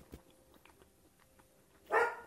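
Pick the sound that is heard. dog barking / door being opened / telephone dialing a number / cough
dog barking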